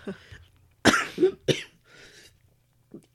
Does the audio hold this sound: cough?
yes